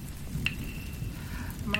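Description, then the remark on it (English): Soft, steady rain falls in a continuous gentle hiss, fairly quiet and even throughout, with a couple of faint high tones ringing briefly in the background. “I want you to feel the rain gently fall from the sky.”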